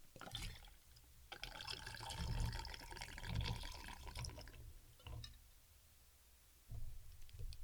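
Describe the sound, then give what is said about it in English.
About 2 ounces of vodka pours steadily into a cocktail shaker partly filled with ice for a few seconds, a gurgling splash of liquid filling the tin, followed by quieter clinks and handling noises, with no one speaking. “And then next, pour 2 ounces of vodka into your shaker.”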